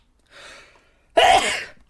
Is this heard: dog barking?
no